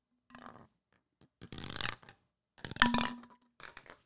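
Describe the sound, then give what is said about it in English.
A blender bottle being shaken in four short bursts to mix a hydration drink, its metal whisk ball clanking and rattling against the plastic, with brief pauses between shakes and no talking. “Sorry about the fucking blender bottle.”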